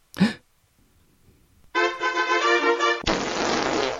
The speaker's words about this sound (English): Welcome to Big Fart. Would you like me to fart?